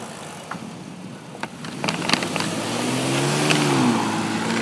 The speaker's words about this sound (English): My aero bottle on the front of my bike is what's banging around when you hear that sound. That sound right there.